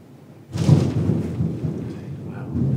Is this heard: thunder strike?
yes